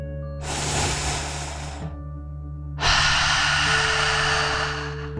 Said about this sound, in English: Breathe in through your nose, filling up your lungs, and then out through your mouth, imagining you are breathing fire like a dragon. Ready? Deep breath. In and out.